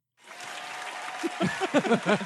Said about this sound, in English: They're just clapping because...